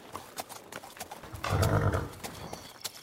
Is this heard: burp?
no